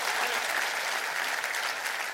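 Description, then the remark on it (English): A church audience at a Wednesday night service claps their hands in a dense, steady wash of applause, many hands overlapping into a continuous bright crackle that holds at an even loudness throughout, with no voices standing out. “Come on, clap your hands and say amen to that.”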